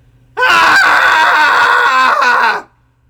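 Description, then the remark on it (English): A crowd of voices screams together in a cathartic scream for the troops after a countdown, one loud, sustained burst lasting a little over two seconds, overlapping shrill tones blending into a single roar before cutting off abruptly. “Somebody send me a video going down to a VFW and getting them all to scream. everybody welcome. Let's scream together for the troops.”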